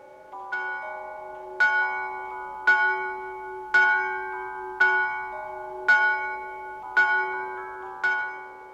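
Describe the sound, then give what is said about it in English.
The bell of a neighbouring church chimes the hour, striking twelve in a steady series of resonant strikes about a second apart, each ringing tone overlapping the next. It sounds clear, with no voices. “He was endeavouring to pierce the darkness when the chimes of a neighbouring church struck.”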